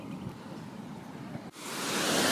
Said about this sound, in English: So I'm actually stood at the falls themselves where you can hear the river obviously falling down. There's a couple of falls coming underneath the bridge and then falling down in two rivulets.